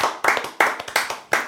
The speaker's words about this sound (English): That was lovely. That was really good. Round of applause.